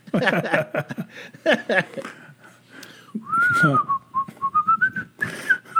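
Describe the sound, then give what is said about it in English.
A person whistles a short bit of the tune Dixie, a rising then wavering run of clear notes, just after a burst of speech and chuckling; the melody lasts only a couple of seconds. “You know, maybe they're whistling Dixie.”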